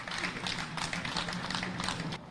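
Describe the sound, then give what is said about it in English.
An audience applauds Harriet's Wildest Dreams for organizing the mothers. It is a steady, dense crackle of many hands clapping at once that holds at an even, moderate level for the whole stretch, with no one speaking over it. “Let's give Harriet's Wildest Dreams a round of applause as well for organizing these mothers.”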